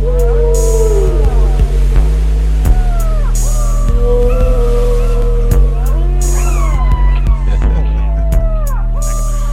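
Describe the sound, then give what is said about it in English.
Whale song from a big whale: a series of long, sweeping moans and whistles that rise and fall, layered over a steady low droning hum with occasional sharp clicks, continuous and fairly loud throughout. “Oh, big fella. Big whale.”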